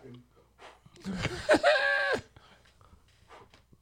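A dog lets out a drawn-out, wavering whine-like vocal noise lasting about a second, loud, against a faint background murmur.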